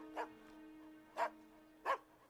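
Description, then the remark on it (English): A dog barks three times at roughly one-second intervals, with a fourth bark just beginning at the end. The short, sharp barks sound over a faint, steady background hum. “So it's set up for the dog being like snatched through that, right?”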